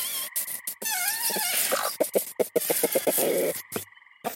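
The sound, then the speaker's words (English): Chickens cluck in a rapid, uneven string of short calls, with a few warbling, drawn-out notes early on. No one speaks. “Hi, chickens!”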